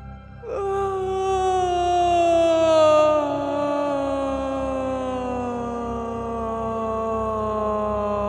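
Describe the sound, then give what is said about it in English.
A long vocal yawn made on an exhale during a guided breathing exercise: a single sustained, moaning voice that starts high and slowly glides downward in pitch over about eight seconds, steady and fairly loud, with no words. “And exhale with a vocal yawn that starts at the top of your head and floats down to your toes.”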